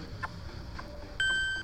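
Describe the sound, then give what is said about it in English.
A bright electronic ting rings out once in a video game as a coin is collected with the coin inventory already maxed out, a clean high tone with shimmering harmonics that holds and slowly fades, over a soft murmur of background noise. “It's now maxed out, so even it made the ting noise, but it looks like I only have 5 coins in a little pile in my inventory.”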